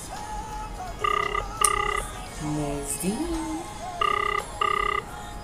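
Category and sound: signal or alarm, outgoing phone call ringing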